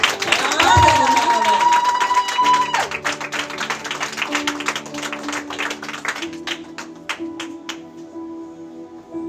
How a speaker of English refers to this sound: Well, I tell you, clap your hands.